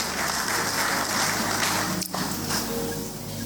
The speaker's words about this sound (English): Stand up. When we had the Interactive Sunday, you spoke so well that day. Help me clap for him.